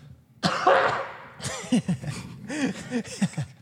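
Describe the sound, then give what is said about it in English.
A loud, harsh cough bursts out, followed by a string of raspy, voiced coughing sounds with rough throaty texture, uneven in rhythm. “Use my cough as the.”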